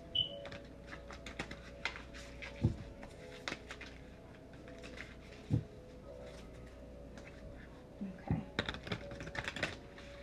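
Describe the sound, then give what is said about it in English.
Tarot cards being shuffled for a reading: rapid, soft papery clicks and flicks in uneven bursts, with a few sharper taps, over a steady low background hum and no talking. “So right now I'm just shuffling the cards again.”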